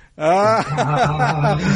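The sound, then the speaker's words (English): A voice imitates the revving engine of a Fastback Mustang car, a low, buzzy rumble that drops in pitch and then holds steady as a loud growl lasting under two seconds. “Fastback Mustang.”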